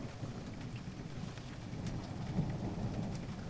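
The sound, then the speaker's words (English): An afternoon thunderstorm: steady, hissing rain pours throughout while deep thunder rumbles continuously underneath, full, with no voices. “The storms continued for most of the afternoon.”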